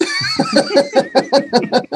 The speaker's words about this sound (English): My random coughing fits, it's all good. I'm asthmatic, I can't help it.